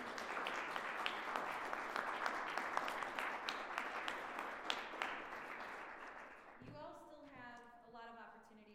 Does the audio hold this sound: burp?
no